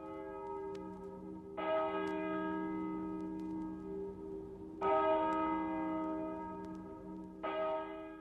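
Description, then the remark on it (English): A church bell near a smoky town tolls slowly, struck three times at even intervals, each deep ringing strike fading into a long, humming resonance that overlaps the next; no voices are present. “All this sadness and conflict and attrition and frustration were set in this 1 acre near the smoky town within sound of a tolling bell.”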